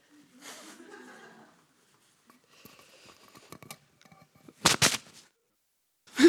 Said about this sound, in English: Sorry, let me just blow my nose. I got a bit emotional.